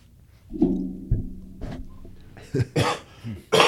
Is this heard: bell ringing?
no